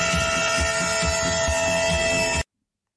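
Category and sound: vehicle, train horn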